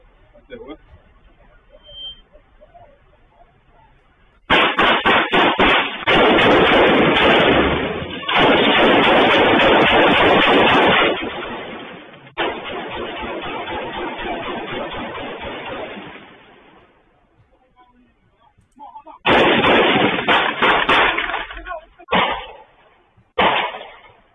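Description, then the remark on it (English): Rapid bursts of gunfire crackle from a replayed video of a mass shooting in Chattanooga in which about 17 people were shot, with sharp repeated shots packed into loud, harsh stretches that stop and start several times, followed by a final cluster of shots. “Like 17 people got shot. Look, here's a replay of it all.”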